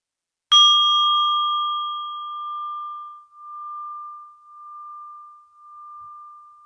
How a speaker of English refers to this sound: And I will ring the bell one last time to end this practice. Maybe concentrate on a longer out-breath one more time with this.